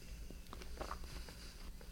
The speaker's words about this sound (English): So this has like a crunchy streusel topping. You can hear him chewing it. Listen.